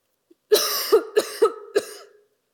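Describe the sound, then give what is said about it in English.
A loud fit of coughing by a speaker during a church talk: four harsh bursts in quick succession over about two seconds, with no talking around them. “As we close, not just because I'm coughing, let's remember that these freedoms do not strip us.”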